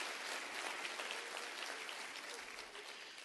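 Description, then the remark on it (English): A church audience claps hands at the preacher's urging during a sermon, in steady, dense applause, a bright crackling wash of many overlapping claps at even loudness, fading slightly toward the end. “Come on, clap your hands.”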